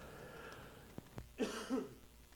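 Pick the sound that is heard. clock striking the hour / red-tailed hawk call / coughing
coughing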